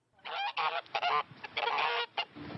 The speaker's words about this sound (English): Attacking angry geese are causing quite a stir in a Melbourne park. They're going after passersby, city officials, you name it.